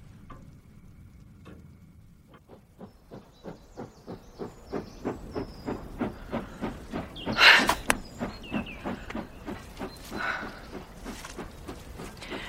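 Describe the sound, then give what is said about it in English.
A train slows down to make a curve, rolling along the tracks with a steady, rhythmic clacking of wheels over rail joints beside a steeply falling embankment, with a sharp burst of hissing steam partway through. No one speaks. “The train slows down to make the curve and the embankment falls steeply away.”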